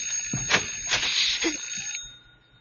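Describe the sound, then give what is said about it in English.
A doorbell rings with a bright, rattling trill for about two seconds, fairly loud, then cuts off and leaves quiet. “Because the doorbell is ringing.”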